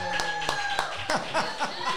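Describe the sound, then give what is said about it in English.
A small, sparse round of applause for former relief pitcher Jeff Nelson: a handful of sharp claps landing at a steady, unhurried pace, with a faint tone and some voices murmuring underneath. “Let's give a round of applause for Jeff Nelson right here, baby.”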